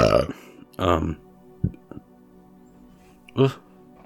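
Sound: burp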